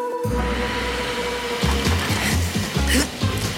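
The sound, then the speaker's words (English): A vacuum cleaner switches on and runs with a loud, steady whooshing roar over a low motor hum, its tone pulsing and wavering in the second half as it works. “Found the vacuum cleaner.”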